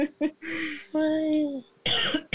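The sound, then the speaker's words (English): A person coughs in a short fit: a couple of quick, sharp hacks, a drawn-out voiced, wheezy stretch, then a harsh, loud cough. “Coughing.”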